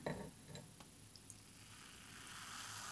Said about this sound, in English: I'm going to pour the champagne in first, then the juicy stuff so that the bubbles don't really die on me. Here we go.